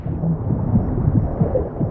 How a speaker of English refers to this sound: You can hear the heartbeat slowing, because that's what happens when you dive deeper. Your heart rate slows down, so you hear that. And we tried to capture with the sound design the what you would hear.